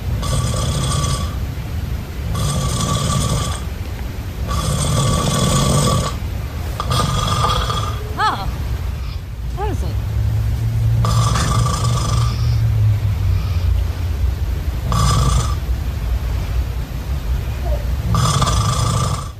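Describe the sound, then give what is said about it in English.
A man snores loudly while sleeping with his mouth open, harsh rasping snores repeating in a quick, steady rhythm roughly every two seconds, with brief breathy gaps between them. “Here is … snoring.”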